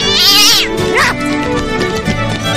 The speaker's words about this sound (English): Ah! Ah! There's a cat in the barn.